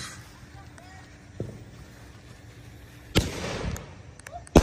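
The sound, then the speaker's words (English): Outdoors, a small pop is followed by a loud firework explosion that crackles for about a second, then another sharp bang, with faint background voices. “Okay, I know you can barely see me, but apparently my brother had a firework like hidden, and so he just brought it out and he said I should film it.”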